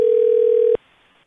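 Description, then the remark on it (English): A telephone dial tone after the caller's mother hung up the call: one steady, loud mid-pitched hum that holds unchanged for under a second, then cuts off abruptly into near silence. “Oh no, Mom hung up.”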